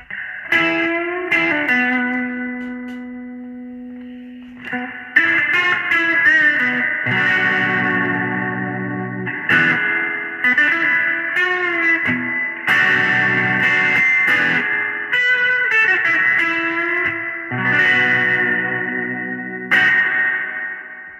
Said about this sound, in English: But I'm going to do the 65 Deluxe Reverb here. And I've got the reverb on it set right now at 12 o'clock. And this is how much more lush it sounds.